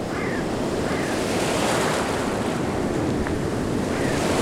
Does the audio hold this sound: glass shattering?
no